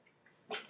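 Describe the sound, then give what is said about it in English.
After a quiet moment, a dog lets out a brief, high-pitched whimper with a little scuffling, moderately loud, then it trails off into a thin whine, as two dogs, Maisie and Sammy, have an issue, Maisie scratching Sammy's leg. “The dogs are having an issue.”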